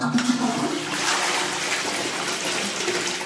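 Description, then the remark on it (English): A shiny new toilet flushes with a loud, steady rush of swirling water that fills the whole stretch, without any voices over it. “Should we check out the flush?”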